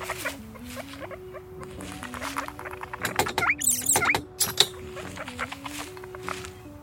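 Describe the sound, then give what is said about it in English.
A live guinea pig squeaks and chirps in steady, warbling tones while it is set into a cage holding a live Calyptra specimen from Brazil, with a burst of rustling, scraping and light clattering midway before the squeaking carries on. “we are now placing a live guinea pig into the cage.”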